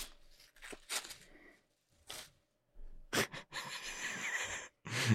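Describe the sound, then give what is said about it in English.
Crinkly rustling of tissue paper as extensive packaging around a book is unwrapped, coming in several short bursts with brief pauses, then a longer stretch of steady crackling near the end. No one speaks. “Okay, we've got tissue paper. Oh, packaging is extensive.”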